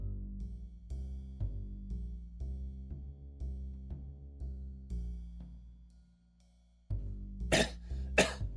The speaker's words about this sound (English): … was the one having a coughing fit the next day.